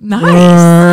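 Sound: voice imitating a foghorn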